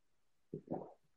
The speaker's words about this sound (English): Did you hear that? I tried to do it louder. That was a gulp.